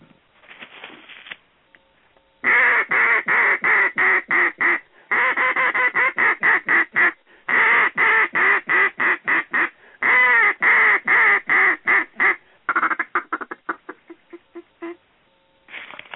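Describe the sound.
A duck call imitates hen mallard greeting calls: loud runs of rapid, evenly spaced quacks in several bursts separated by short pauses, with no talking.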